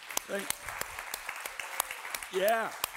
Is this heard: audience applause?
yes